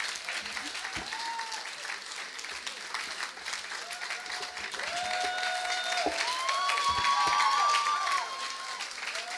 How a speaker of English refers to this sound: Give it up for the …. Don't stop clapping. Are you still clapping? Some people gave up.